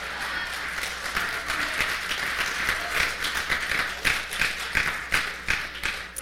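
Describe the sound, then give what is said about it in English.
Scattered applause from a small group in a church, a steady patter of individual hand claps lasting several seconds at moderate volume, with no voices over it. “Yeah, just a few claps.”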